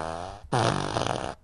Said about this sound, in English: I have the fart machine. I have the fart machine one. Hang on.